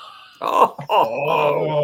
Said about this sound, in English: Alicia's cat's trying to talk to Ori. We have cat communication right now.